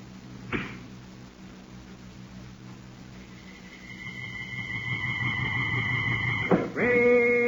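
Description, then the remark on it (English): An arrow set against a rawhide string is loosed from a strong bow bent almost to the breaking point, with a sharp snap, then a long, shrill whistling rises as it flies toward a moving target before ending in a solid thunk of impact, with a ringing tone lingering afterward. “A gleaming arrow set against a rawhide string. A strong bow bent almost to the breaking point.”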